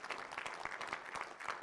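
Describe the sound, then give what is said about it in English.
An audience gives the Lord a clap offering during a sermon, a dense, steady patter of many hands with a few sharper individual claps standing out, fairly soft and continuous, with no voices over it. “Let's give the Lord a clap offering for what Jesus did for you today.”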